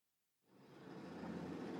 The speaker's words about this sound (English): One day, Rigoberta was bouncing along in a truck as it bumped down the dirt roads that cut through the forest.